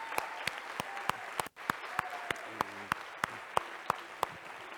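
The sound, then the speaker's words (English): A church audience at First Missionary claps steadily in praise of the Lord as a guest is brought out, dense applause with a few sharper individual claps standing out at regular intervals, moderately loud with faint background voices beneath. “Bring him out here, and when he comes in here, give the Lord a tremendous hand clap of praise, because God through this guy right here, has done a tremendous, woo, yes!”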